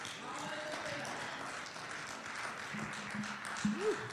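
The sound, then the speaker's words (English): A crowd, standing to their feet in the morning, claps together in a steady, dense wash of applause, with faint voices and a brief rising vocal shout near the end. “All right, let's get up and let's stand to our feet and come on, clap our hands this morning.”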